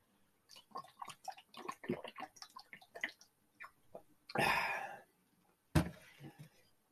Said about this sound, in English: I mean, I just bopped you on the head with my water cup. I got to get a drink of water, though, because I got raspy throat.